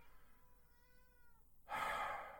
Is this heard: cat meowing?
yes